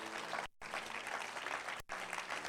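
A crowd claps steadily in a dense, sustained wash of applause, with two brief cuts of near silence interrupting it; no voices stand out.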